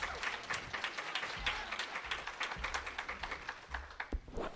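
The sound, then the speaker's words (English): An audience claps their hands in a dense, steady burst of applause, welcoming a speaker up to share a testimony; many overlapping claps form a continuous crackling wash that holds at an even loudness throughout. “Would you clap your hands today?”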